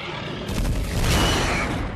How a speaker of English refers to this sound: Yes, they were a little bit disappointed. The explosion in real life wasn't as big as they'd hoped, so they had to CGI it up a bit.